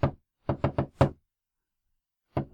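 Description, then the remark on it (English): Sharp knocks tapped on a hard surface in a four-beat rhythm recalling the Doctor Who knock-four-times arc: one knock, then a quick run of four evenly spaced raps, then a lone knock after a pause. No voices. “The moment you started tapping like that, I was just like, fucking Doctor Who, thanks.”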